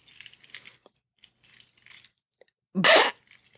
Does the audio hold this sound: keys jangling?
yes